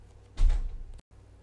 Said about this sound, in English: All right, so sorry, my kids came in and were knocking. 4-year-olds, man, tell you.